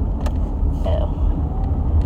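A car engine rumbles, a steady low drone that fills the short stretch at an even, fairly loud level, with a faint brief tonal whine partway through.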